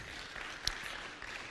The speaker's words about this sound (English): Can we give the Lord a great round of applause for that?